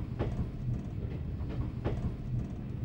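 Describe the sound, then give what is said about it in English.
A train approaching Hampton Road station runs along the rails with a steady, heavy low rumble, punctuated by a few sharp rhythmic clacks as the wheels pass over track joints. No one speaks. “Just approaching Hampton Road station now, so we need to check the time.”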